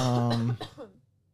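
cough

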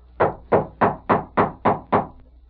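knocking on a door

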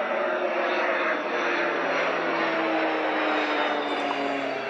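airplane flying overhead

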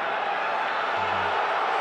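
arena crowd booing

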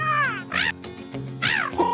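bird calls

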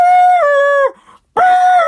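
alarm siren sound effect

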